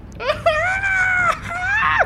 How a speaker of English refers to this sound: Just seeing this thing swoop down and attack you. Scream like a little girl.